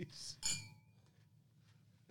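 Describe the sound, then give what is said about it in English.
Drinking glasses clink together in a toast, one bright clink that rings briefly before fading, with muffled voices murmuring in the background. “Bring your glass over. Sorry, guys.”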